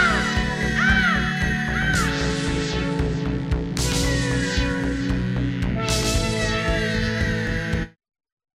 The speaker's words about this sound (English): So you heard that. He will drive by sometimes four times in a day honking that cruise horn.